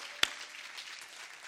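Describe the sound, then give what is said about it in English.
An audience claps for the Lord, a dense, steady patter of many hands with one sharp, louder clap standing out early on. No one speaks. “Can you give the Lord a hand clap right now?”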